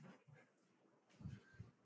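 A blind dog whimpers softly, then a couple of dull, low thuds as it falls about 2.5 feet off a couch onto the floor, with faint scrabbling in between.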